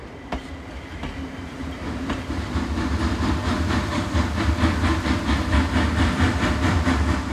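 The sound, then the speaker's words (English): A passenger train headed to Chicago, Illinois rolls steadily along the rails, a continuous low rumble with repeated clicking wheel beats that grow slightly louder and busier, heard from inside the moving car with no one talking. “Folks, we are on the train right now.”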